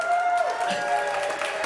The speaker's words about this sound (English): Okay, so are you ready? On your mark, you gotta cheer them on, okay? Get set, go, go, go!